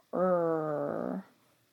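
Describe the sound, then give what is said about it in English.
A voice imitates a dog-like growl to illustrate the sound of the letter R: one steady, rumbling growl lasting about a second, fairly loud, with nothing else around it. “Sometimes I make that sound when I growl.”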